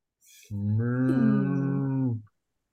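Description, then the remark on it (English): A single long, loud moo lasting nearly two seconds, made by a person's voice imitating a cow, with a steady droning pitch, preceded by a brief breathy hiss. “Moo. Thank you. I'm cow Satan in this scenario.”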